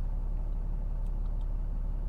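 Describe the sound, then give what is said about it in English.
A diesel truck engine idles steadily, a continuous low, throbbing rumble that holds an even level throughout, with no voices. “This particular truck was chosen because it's diesel.”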